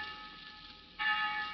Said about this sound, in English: Very soon now, millions of eager young Americans will answer the summons of the college bells, ringing in a new academic year, years that most men consider the happiest of their lives.